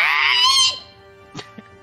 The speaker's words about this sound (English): As the searing holy light burns away at him, the zombie lets out an unholy screech. Much louder and shriller than the screech of the zombie on fire.